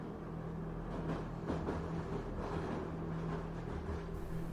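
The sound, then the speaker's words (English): A train rumbles steadily through a tunnel, a dense, continuous low roar with a droning hum underneath and faint rattling surges, holding at a constant loudness throughout without any voices. “The sound of the train rumbling through the tunnel echoes off the walls.”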